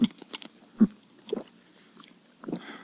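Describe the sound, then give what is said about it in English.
Quiet sipping of water through a glass straw: a handful of soft, wet slurps and swallows spaced irregularly, with faint mouth sounds in between and no talking. “You sip a little water through this glass straw.”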